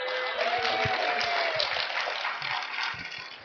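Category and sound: crowd, audience applauding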